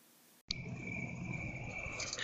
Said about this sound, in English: if you can hear the crickets, this is clearly Sainio After Dark. The crickets have come out.